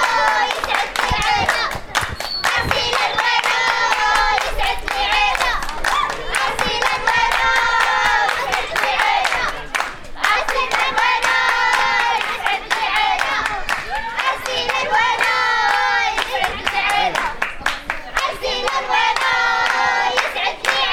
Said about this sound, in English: I'm going to give you a little bit of a flavor of what it's like to be a young girl in this program, just singing and cheering for your friends to get it started, and then we'll continue from there.